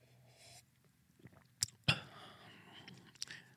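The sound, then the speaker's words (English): A voice imitates how a man drinks, making wet mouth noises: soft slurps and smacks, a few sharp clicking bursts, and quiet squishy lapping in between, with no speech. “But he'll be drinking. And when he drinks like this. And I wonder if I can get the microphone to pick this up.”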